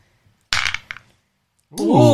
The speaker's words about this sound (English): Roll your strength check. Roll your d12. Keep it in the dice roller.